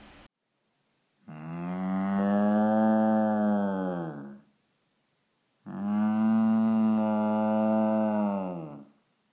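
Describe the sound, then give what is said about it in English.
Two long, loud cow moos, each lasting about three seconds, separated by a short pause, with no other sounds around them. “But it's not called the Cream City because of cows.”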